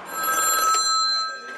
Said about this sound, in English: Suddenly, from nowhere, a phone call comes in.